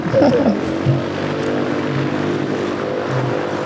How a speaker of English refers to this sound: I think we got another airplane in the back. Yeah, we got here. Another airplane, guys.